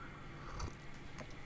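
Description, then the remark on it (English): Someone takes a quiet sip of tea: a soft, wet slurp around the middle followed by a brief second smack, over a low steady hum with no talking. “So I'm going to take another sip of my tea here.”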